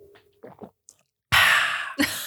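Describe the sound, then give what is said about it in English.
A few soft, low swallowing gulps from a sip of West Coast style IPA beer, followed by a loud, breathy exhale that hisses for about a second before a second short burst of breath. “Yeah, I don't know if that picked up my gulp.”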